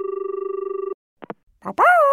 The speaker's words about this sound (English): That's when the phone rang.